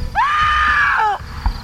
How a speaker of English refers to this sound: A white, full moon was already lighting the parking lot as I shoved my way out of the building and clattered into the parking lot. I was screaming my head off as I surfaced into the cold night air.